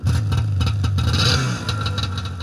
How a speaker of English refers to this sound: It was a very dangerous and very fast machine, but I really, really loved it, and I went everywhere on the thing. There was definitely this huge sense of freedom that I got riding the snowmobile.